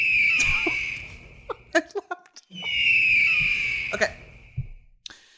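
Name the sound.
eagle screech sound effect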